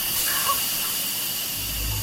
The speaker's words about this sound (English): The plumbing hisses and screams like broken hydraulics when the air pockets from the new installations get pumped out.